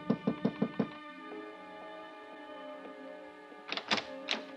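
Four quick, sharp knocks on the wooden door of room 1016 at the Roosevelt Hotel on Canal Street, a pause filled with a low sustained tone, then three more knocks, clear.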